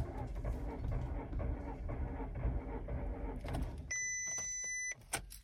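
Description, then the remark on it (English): The engine of a car called Uncle Poppy rumbles steadily for several seconds, then a sustained electronic beep tone sounds for about a second, followed by a few sharp clicks. No one speaks. “Let's hear Uncle Poppy's noise once more.”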